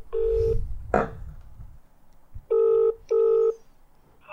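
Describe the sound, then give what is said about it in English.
Steady electronic telephone dialing tones before a call to a pizza shop sound in separate beeps: one early, then two near-identical half-second tones with a short pause between, clear, mixed with some low rustling and a brief thump. “If they don't pick up, I might just leave a voicemail and then we'll call someone else.”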